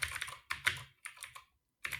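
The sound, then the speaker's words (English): Quick bursts of typing on a computer keyboard as someone asks ChatGPT to write a cryptic clue, fairly quiet, with clustered key clicks separated by short pauses over about two seconds, no voices. “You're typing.”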